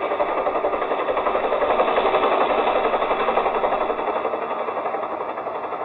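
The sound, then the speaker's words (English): A helicopter coming into San Borja at night, its rotor chopping in a fast, steady rhythm over a dense mechanical engine roar, loud and continuous throughout with no voices. “Well, the fields in San Borja make it tough for a plane, but for a helicopter, that's another thing.”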